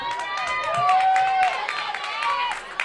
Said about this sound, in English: Natalie Floyd getting a little hometown applause here.